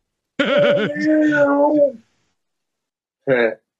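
A cat meows outside on a porch, heard through an open window: one long, drawn-out wavering meow followed after a pause by a short, higher meow, both clear with no talking.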